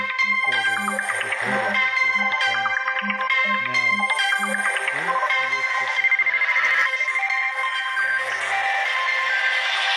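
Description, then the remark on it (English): A mobile phone ringtone plays a bright, repeating electronic melody, loud, with a pulsing low bass line beneath it, sounding continuously throughout with no voices over it. “My phone, I don't know if you can hear that.”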